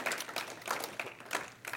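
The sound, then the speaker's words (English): An audience at a morning church service claps in praise of the Lord, a dense, crackling patter of many hands that runs steadily with a few brief swells, fairly soft overall and with no voices over it. “Can we give the Lord a hand clap of praise in this house this morning?”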